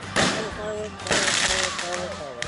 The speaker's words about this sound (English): Another firework. Oh my God.